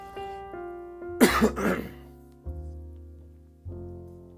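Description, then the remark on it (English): A sudden cough from allergies bursts out once in a quick double-hack, set against soft, sustained ringing tones that strike at a slow, steady pace. “And you'll have to pardon me, my allergies are in full bloom this morning, and so I have some coughing and wheezing I have to do.”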